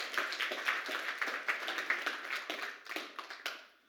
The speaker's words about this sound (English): Give them all a round of applause with you.